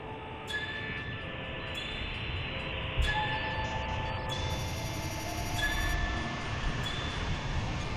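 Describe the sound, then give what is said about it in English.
A train rumbles steadily past near a railway junction, southwest of the Highland Lines Railway Junction, its heavy low roar carrying high metallic squeals and ringing tones from the wheels and rails. There is no talking. “Southwest of the Highland Lines Railway Junction.”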